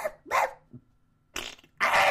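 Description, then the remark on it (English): A dog named Spunky barks three times, short loud yaps with brief pauses between them, the last one longer and harsher, with no talking around them. “let's try it on the dog.”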